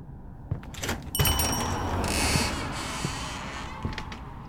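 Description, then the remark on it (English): A door creaks on its hinges with a groaning, scraping sound, then thuds shut, followed by a few lighter knocks and rattles against a steady background rumble. No one speaks. “Nobody around here knows how to close a goddamn door?”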